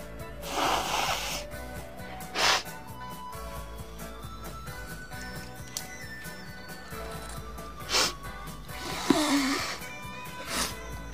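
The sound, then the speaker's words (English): Several quick, hard snorts through the nose as someone sniffs something up the nostril, sharp breathy bursts spaced irregularly with quiet pauses between, one longer and raspier near the end. “Make sure you snore it back. Real quick and hard.”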